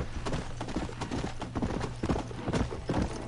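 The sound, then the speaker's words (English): Horse hooves clip-clop in a steady, brisk rhythm on a hard surface as a horse carriage rolls past, with a low rumbling hum underneath and no voices. “It'll pull you up to a horse carriage or a train.”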